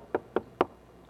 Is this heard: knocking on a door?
yes